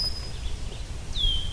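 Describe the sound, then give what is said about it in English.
A couple of thin, high bird whistles, one held at the start and a brighter downward-sliding call near the end, ring out over a steady low outdoor rumble on a shaded trail along the St. Lawrence River in the Thousand Islands during a trail run. No one speaks. “This trail starts right along the St. Lawrence River, so it's a bit cooler, and I'm in the shade. You can hear the birds.”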